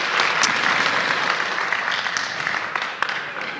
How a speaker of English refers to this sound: Well, thank you very much. If we give her a big round of applause.